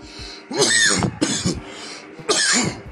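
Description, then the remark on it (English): Three loud, harsh coughs burst out in quick succession from someone smoking a blunt, each a raspy, breathy explosion with a short gap between them and no talking. “Excuse all the coughing.”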